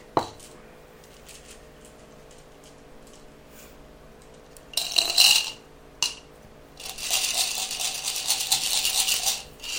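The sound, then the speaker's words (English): Bursts of hard clattering and rattling as twenty dice are rolled across a table for a damage roll in a tabletop game, coming in two loud waves, the second longer and sustained, with quieter gaps between. “So 20 dice. All of those dice. You're rolling all of your dice.”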